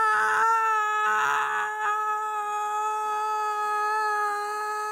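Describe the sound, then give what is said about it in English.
A person loudly imitates a young child screaming and crying at being taken out of the bath, holding one long, high, wailing note for several seconds, with no other sounds. “So I'm like, all right, Finn, time to get out of your bath. And so what does he do? He cries, right? It's blares.”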